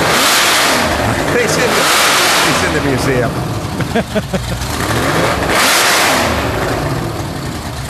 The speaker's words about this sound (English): He's firing up the Daytona. That car number 13.